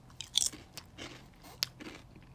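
Crunching of someone chewing crispy cheddar-flavoured potato chips, with several sharp, crackly bites in an irregular rhythm, heard alone without talking.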